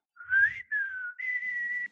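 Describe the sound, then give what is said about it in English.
A person whistles a short, wobbly tune of three sustained notes, the pitch rising then gliding down before settling on a steady tone, fairly loud with a breathy start. “Can't whistle.”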